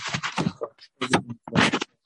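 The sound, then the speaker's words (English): Paper being touched rustles and crinkles close to the microphone in three quick, uneven bursts separated by short pauses, with no voices present. “I think there is some sound coming. You're touching any paper there.”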